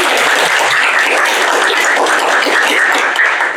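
An audience claps steadily for a presenter after his turn, a dense, continuous wash of applause at full volume that holds evenly from start to finish with no voices standing out.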